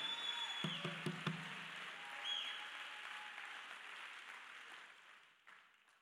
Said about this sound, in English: Oh, you ought to clap your hands if you want glory to show up. You ought to clap your hands if you want glory to show up.